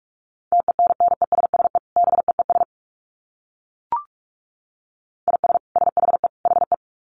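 Rapid Morse code at 45 words per minute: a steady mid-pitched tone keyed in fast dits and dahs, two quick bursts, a pause with a brief blip, then more fast keying.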